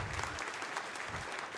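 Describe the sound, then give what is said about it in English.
An audience claps steadily after hearing that at least 10 students accepted Christ at youth on Wednesday, a dense wash of many overlapping hand claps at a fairly even loudness throughout, with no voices standing out. “This is where you clap and turn up.”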